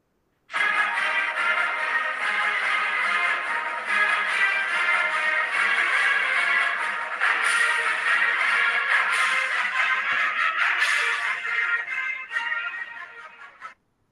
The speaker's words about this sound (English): But first, as always, from my phone, the Oregon State men's fight song. Take it in.